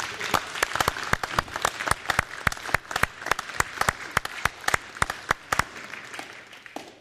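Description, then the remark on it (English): An audience applauds steadily for several seconds, dense overlapping claps with a few sharp, louder individual claps standing out, fading slightly toward the end. “And so I want you to give him a hand of applause because he's a hero.”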